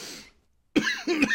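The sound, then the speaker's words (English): Two harsh coughs in quick succession after a brief silence, loud and abrupt, with a fading breathy sound before the pause. “Get that cough out of the way, you know.”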